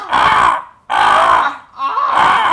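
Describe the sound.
A voice imitates a crow with three loud, harsh, drawn-out caws, each lasting about half a second to a second, separated by brief pauses.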